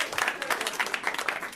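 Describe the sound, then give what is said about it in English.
An audience claps steadily, a dense patter of many hands forming a continuous wash of applause at moderate volume, with no one speaking over it. “Yeah, clap it up for that guy.”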